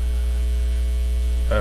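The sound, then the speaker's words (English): A steady electrical mains hum drones throughout, low and constant with buzzing harmonics, fairly loud, with a brief brighter noise burst right at the end. “Yeah, I'm behind this glass, and it's just like, oh, humming coming from somewhere.”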